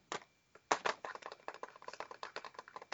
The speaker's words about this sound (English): Let's see what happens. I'm typing it in. Okay.